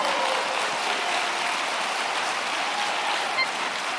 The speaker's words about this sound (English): Clap your hands if you can.